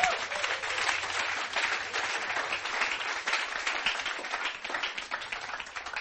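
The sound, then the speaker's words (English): Sustained applause from an audience, a dense, steady wash of many hands clapping together at moderate loudness for several seconds with no talking. “It's a good place to clap.”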